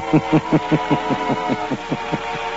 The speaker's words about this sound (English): gets his car and drives to Monsieur Gallet's home.